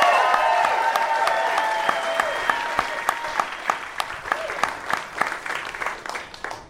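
An audience applauds with steady, dense clapping that thins to scattered individual claps toward the end, with a sustained tonal sound mixed in during the first few seconds. No one speaks.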